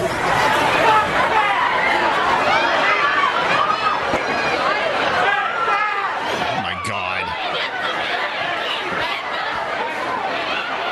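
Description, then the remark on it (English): A frantic crowd of Black Friday shoppers scuffling over a TV in a local Walmart store: overlapping shouts and excited chatter fill the whole stretch at steady loudness, with a sharp bang or slam cutting through midway. “Guess where the Black Friday chaos happened.”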